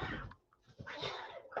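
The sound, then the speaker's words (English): Cats fighting outside a window, a few harsh hissing, spitting bursts with a short yowl near the end, faint and muffled. “My cat's outside having to fight.”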